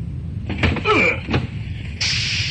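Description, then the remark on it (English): A door bangs with a few sharp thuds and a brief creaking squeal, followed by a steady hiss; no one speaks. “The stagehands didn't open the door quickly enough.”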